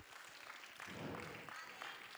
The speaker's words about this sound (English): Well, somebody clap your hands to the Lord today.